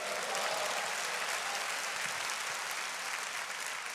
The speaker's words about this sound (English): Clap your hands and say praise the Lord.